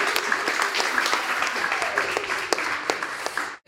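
Steady, dense audience applause with many overlapping claps at an even, lively level, continuing for a few seconds before cutting off abruptly at the end.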